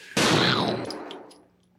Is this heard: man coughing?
no